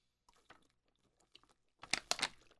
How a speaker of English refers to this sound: I'm swigging my water because I just went for a walk.